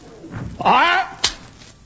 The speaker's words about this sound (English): And when we're ready to go, I'll bang on the back of the van.